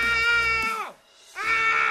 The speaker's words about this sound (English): The guy basically just screamed and then jumped off a bridge.